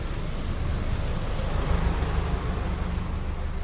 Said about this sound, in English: Hang on, there's a massive truck with huge fumes coming by. And I'm going to take a big breath because it looks very black and smoky.